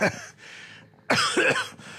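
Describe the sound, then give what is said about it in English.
A person acts out a man's profuse fit of coughing: a harsh, raspy burst, a brief pause, then a louder run of rough coughs. The coughing is a vocal imitation, with no speech. “and he just starts coughing profusely, and you can see smoke is starting to, like, billow out of his lungs, and his skin is starting to like, wither like a raisin.”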